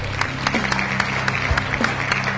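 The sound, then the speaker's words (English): A short burst of applause, many hands clapping in a dense, steady patter at a moderate level, with no one speaking over it. “You know it's a good show if I'm already applauding.”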